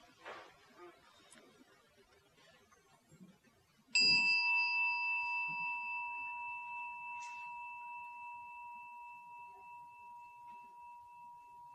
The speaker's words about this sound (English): So let's try again. This is the beauty of the gong. It's just an invitation to come back again.